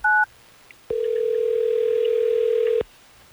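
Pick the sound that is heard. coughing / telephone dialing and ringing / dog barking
telephone dialing and ringing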